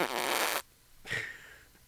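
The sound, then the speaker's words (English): A loud, buzzy fart sound blasts for about half a second, then after a brief pause a shorter, softer raspy burst trails off. No talking. “Here is a fart noise.”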